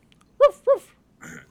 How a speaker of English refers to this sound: So Nathan then thought he heard growling.